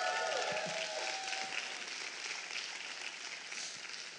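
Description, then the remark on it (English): A church audience at Bethesda applauds and cheers, a dense, steady wash of clapping for several seconds, with scattered shouts and a brief whoop rising near the start. “Let's hear from a redeemed, free indeed crowd today.”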